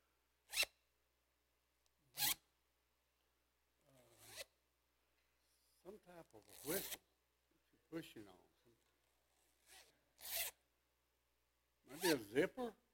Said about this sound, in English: A zipper? That is a zipper.